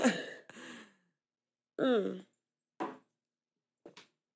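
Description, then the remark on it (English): A person with a dry mouth swallows and clears their throat: a series of short throat-clearing noises and mouth sounds, a couple of longer rasps followed by two quicker, fainter bursts, with brief silences between them and no speech. “I hope y'all ain't hear me swallow.”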